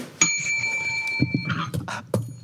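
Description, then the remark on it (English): A broken bell rings once, bright, its metallic tone lingering for over a second before fading into a few short rattling, clattering knocks. “Oh no, I have my bell too.”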